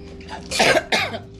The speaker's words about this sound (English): I ain't got corona. I got sarcoidosis. That's why I'm coughing.